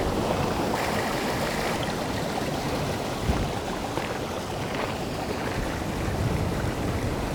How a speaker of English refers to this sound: There's a channel nearby and the water is shooting up through the channel. I didn't think that was going to happen. Just got me wet.